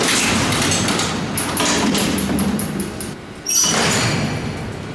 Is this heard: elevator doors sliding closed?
yes